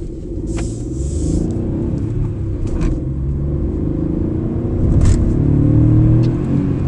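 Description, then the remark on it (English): A small Hyundai car engine revs steadily as the car is taken out for a drive, a low rumbling drone that swells slightly toward the end, with a few brief hissing bursts over it and no talking. “Oh, that's lovely sounding. I mean, I'm a big fan of Hyundai.”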